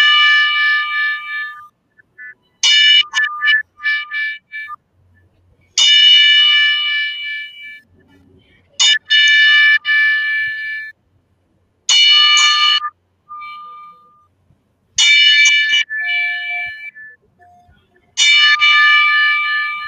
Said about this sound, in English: So, with that being said, everybody, including the viewers who are currently watching this and in here as well, bow your heads down as we pay tribute to Alex Trebek, Howie Meeker, and Tommy with a moment of silence, and also toll the bell 10 times.